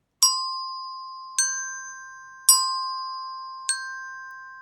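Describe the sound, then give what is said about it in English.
Four clear, ringing resonator bell tones struck about a second apart, alternating between the notes Do and So, each note sustaining and slowly fading into the next, with no voices. “So similarly, we can look for Do, which is red on the resonator bells, and So, which is light blue or turquoise on the resonator bells. And we can play it in an alternating manner.”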